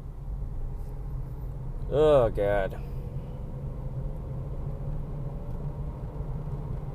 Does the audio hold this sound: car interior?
yes